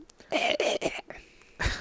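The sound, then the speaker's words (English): A person clears their throat in several harsh, raspy bursts, a rough rattling hack repeated three or four times in quick succession with a short pause before the last one. “My throat got dry right there. Clear your throat.”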